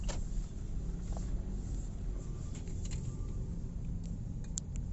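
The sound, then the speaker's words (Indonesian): A car's engine rumbles low and steady as it slowly parks, with a few faint clicks and taps over the continuous droning. “Bisa diparkir sini kan?”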